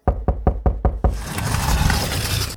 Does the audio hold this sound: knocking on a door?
yes